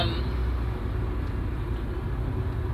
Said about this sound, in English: Sorry, traffic.